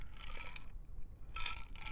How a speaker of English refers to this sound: I had to take a good sip of coffee there.